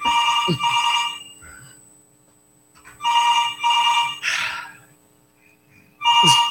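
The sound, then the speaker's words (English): A telephone rings in repeated double bursts, a bright trilling bell pattern with pauses between rings, fairly loud, with no one talking over it. “Howie, pick up the phone.”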